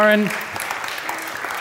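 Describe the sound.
A crowd bursts into applause, a dense, steady crackle of many hands clapping that follows a brief moment of a voice at the start and carries on evenly to the end.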